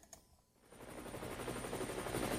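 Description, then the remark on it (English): A traffic helicopter's rotor, 2,000 feet in the air, chops in a rapid, steady rhythm, fading in quickly and then holding loud, with no voices. “Coming to you live from 2,000 feet in the air, this is Car Force One, your friendly neighborhood traffic helicopter”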